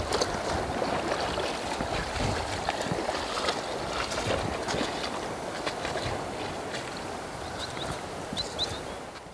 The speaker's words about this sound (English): across some deep, turbulent water right now to get her to the fishing spot.